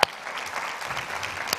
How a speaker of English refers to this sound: Okay, you need to clap louder than that, so I'm going to help you out.